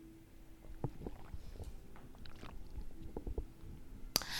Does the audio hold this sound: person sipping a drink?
yes